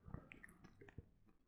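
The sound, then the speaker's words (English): Chewing of a crunchy tortilla chip: a few sharp, crackly crunches spaced irregularly over moist mouth sounds, fairly loud, with no talking. “You could kind of taste it, but you could just hear the crunch, so you know it's there.”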